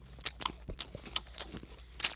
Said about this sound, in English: Here you go. Chew really loud because he likes it when we do that. Like make a smacking noise.